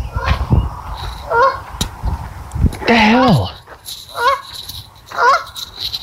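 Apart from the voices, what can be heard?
geese honking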